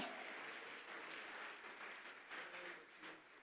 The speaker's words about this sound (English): Jump to your feet and clap your hands and say, we're ready for revival. We're ready for revival.